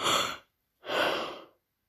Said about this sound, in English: Yes, I'm yawning.